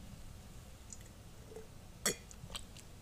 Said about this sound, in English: Excuse me while I take a sip of my wine.